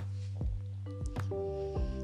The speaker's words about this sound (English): Excuse me, water break.